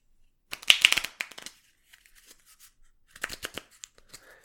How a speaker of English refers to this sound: So get your deck of cards. Like I said, all 54, make sure you have your jokers in there too for your 2 mile runs. Shuffle your cards.